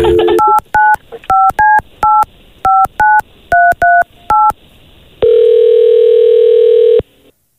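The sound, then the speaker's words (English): A quick run of about eleven touch-tone beeps dialing a father's phone number for a birthday call, in short bursts, followed by a steady, loud ringback-style tone lasting nearly two seconds. No one speaks. “We're going to call your pops right now, okay?”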